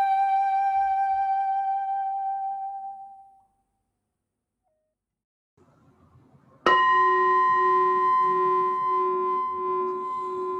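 A Zen meditation bell rings out and slowly fades to silence; after a quiet pause and a faint low rustle, the bell is struck again, its clear shimmering tone sustaining loudly, leading into Zazen meditation.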